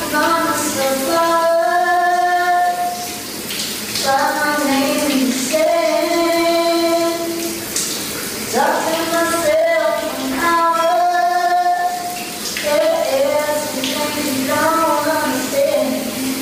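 A steady hiss of shower water runs continuously underneath a woman singing her new song in the shower, the spray constant and fairly loud behind her voice throughout.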